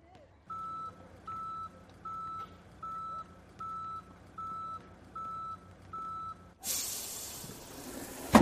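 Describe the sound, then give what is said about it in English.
A delivery truck backing up into a gymnasium: its reversing alarm beeps steadily, eight even tones at a single mid-high pitch over a low engine rumble, then a loud burst of hissing air cuts in at the end. “Just back it right up into the gymnasium.”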